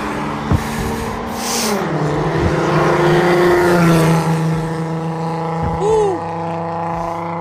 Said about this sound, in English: Cars.